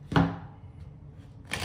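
Tarot cards being shuffled: a sharp papery slap, a brief quiet pause, then a rustling burst of cards at the end. No one speaks.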